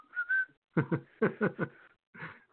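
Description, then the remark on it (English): A person whistles a short, choppy tune: a couple of sustained notes, then a quick run of punchy, breathy bursts, a pause, and one last note. No one talks. “Hate the whistlers.”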